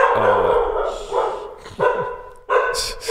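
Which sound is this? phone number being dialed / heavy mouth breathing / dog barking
dog barking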